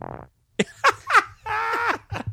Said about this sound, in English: All right. Fart break.